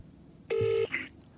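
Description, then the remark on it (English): Phone dialing tones as a call is placed: a steady electronic tone holds for about a third of a second, then a brief, higher beep follows. Clear, with no one speaking. “give him a call”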